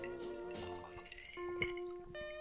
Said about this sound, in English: This is just straight, huh? Straight from the bottle. You saw me pour it straight from the bottle.